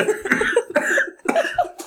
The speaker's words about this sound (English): I nearly coughed up some gas.